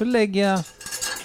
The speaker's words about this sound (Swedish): Så till exempel den här gamla pastakastrullen. Ja, då stoppar jag in den i diskmaskinen här.